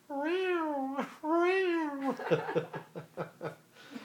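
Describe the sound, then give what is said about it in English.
Two long, drawn-out cat yowls rise and fall in pitch, loud, followed by a couple of seconds of choppy, bursting laughter. “His solos all sounded like this.”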